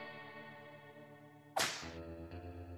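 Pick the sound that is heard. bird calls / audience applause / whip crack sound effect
whip crack sound effect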